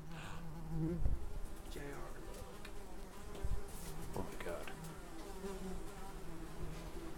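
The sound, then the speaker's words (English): A fly buzzes steadily throughout, a low droning hum that wavers slightly in pitch, with a few faint knocks and rustles underneath and no talking. “Whenever we see a fly demon, get the fuck out.”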